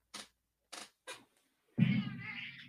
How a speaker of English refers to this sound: Hey. Come here. I got my cat in here with me. How you doing?